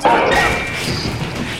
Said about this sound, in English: Help me get this door shut.